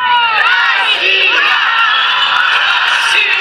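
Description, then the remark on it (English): A large crowd of thousands cheers and shouts continuously at a fireworks display in Sevastopol, Crimea, marking the first anniversary of Russia's annexation of the peninsula: many voices overlapping in a loud, sustained roar with rising whoops and calls throughout. “Thousands turned out for a fireworks display in the Crimean city of Sevastopol, ending a day of celebrations marking the first anniversary of Russia's annexation of the peninsula from Ukraine.”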